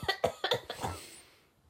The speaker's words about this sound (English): so that's why she's coughing.